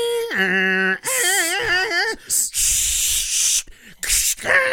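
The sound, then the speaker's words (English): A dial-up modem connecting to the internet: steady electronic tones give way to warbling, chirping pitches, then loud bursts of harsh static hiss broken by brief gaps, with no one talking. “You say that Prodigy isn't actually the internet, but we did the dial-up modem.”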